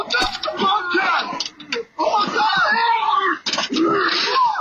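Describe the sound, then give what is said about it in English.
A person being attacked by a bobcat screams loudly in three long, wavering bursts, the pitch sliding up and down, with brief breaks between them. “It's being attacked by a vicious bobcat. Stop screaming, though.”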